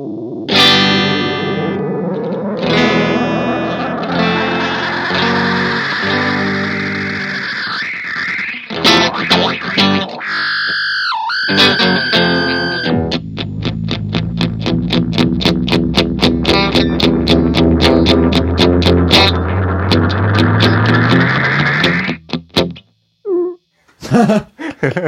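Loud, continuous electronic white noise produced by an effects pedal being tweaked while no instrument is played, with warbling pitch sweeps, distorted buzzing and abrupt glitchy shifts before it cuts out in stutters near the end.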